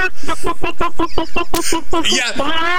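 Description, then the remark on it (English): A person's voice imitates a clucking chicken, a rapid series of about a dozen short, choppy clucks rising into a drawn-out squawk, loud. “you got to do something chicken-related or something.”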